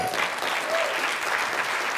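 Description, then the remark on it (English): An audience claps steadily as a clap offering to God, a dense, continuous wash of many hands applauding at an even loudness throughout, with no pauses. “Why don't you give God a good clap offering?”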